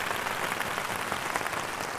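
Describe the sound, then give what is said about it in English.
An applause sound effect: steady crowd applause, a dense patter of many hands clapping at an even loudness for the full two seconds, with no voices. “So give all the DCEU fans a large applause for finally feeling that they can now strut their stuff on the basis of one movie.”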